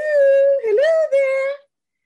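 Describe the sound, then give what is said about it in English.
A person stretches out a greeting in a long, wavering howl, imitating a dog, with a sustained tone that dips and rises across two short breaks before fading out. “You kind of howled a hello, hello.”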